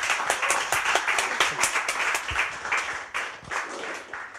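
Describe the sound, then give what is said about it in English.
An audience gives a massive round of applause to Laurie Penny, clapping steadily for several seconds, a dense wash of overlapping claps with a few sharper individual hits standing out, fairly loud and even throughout with no talking. “So if you could give a massive round of applause.”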